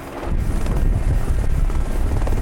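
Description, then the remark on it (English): A helicopter flown by Tom Cruise roars as it arrives and touches down on the deck of an aircraft carrier for the world premiere of his new Top Gun movie. Its rotor beats out a rapid, steady thump over a heavy low engine rumble and rushing wind. It is loud and continuous throughout, with no voices. “Tom Cruise flies a helicopter to the world premiere of his new Top Gun movie overnight, touching down on the deck of an aircraft carrier.”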